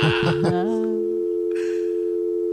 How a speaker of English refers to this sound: It's a dial tone. Dial tone? What is it?